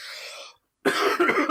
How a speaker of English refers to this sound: I was coughing at that point, so I was just like trying to avoid like coughing and cut that.